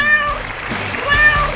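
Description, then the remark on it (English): A cat named Bucky meows twice, fairly loud, each call a drawn-out tonal cry, with a short pause between them and no talking. “her royal Buckiness, the world's most amazing cat, Bucky.”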